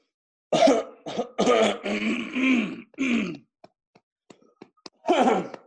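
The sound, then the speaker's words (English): A heavy, harsh coughing fit: several rough bursts in quick succession with throaty clearing, a brief quiet pause with faint clicks, then one more loud cough. “Oh, man, that was a hell of a cough.”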